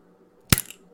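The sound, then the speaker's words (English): An original-flavor Ramune soda from Sangara pops open with a single sharp crack, then a brief hiss of fizz that fades within a fraction of a second. A faint low hum runs underneath, and no one speaks. “We popped up. Okay, there's a little bit of fizz.”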